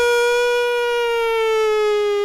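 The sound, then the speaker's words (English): A loud air raid siren wails steadily on one sustained, buzzy tone that sags slightly in pitch, filling the whole stretch with no voices. “Like an aerial, air raid siren.”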